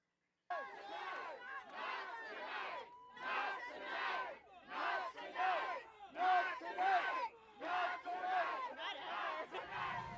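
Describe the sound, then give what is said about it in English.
A crowd of protesters in New York, protesting buses bringing migrants to the city, shouts loudly in rhythmic bursts, chanting in unison with short pauses between each repeated phrase, sustained and raucous throughout. “Here's a clip from the other day of people that were out there protesting with the buses that were coming to New York with the migrants in them.”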